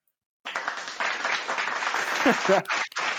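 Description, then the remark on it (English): Canned applause from a sound board bursts in after a brief silence, a dense steady wash of many hands clapping with a few cheers or voices mixed in near the end. “Thanks That's for the effect. Podcast board with the applause.”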